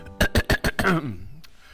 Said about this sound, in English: Excuse me. Guys, I had to clear my throat.